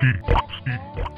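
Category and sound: animal, pig oinking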